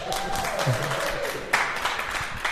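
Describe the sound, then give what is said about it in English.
An audience in Guelph applauds a guest for a few seconds, a dense, steady patter of many hands clapping at moderate loudness, with a faint high tone gliding down early on. “Having a round of applause for our interloper,”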